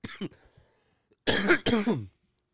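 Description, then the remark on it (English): A couple of faint throaty sounds, then two loud, harsh coughs in quick succession, with no talking. “I'm trying not to cough from the.”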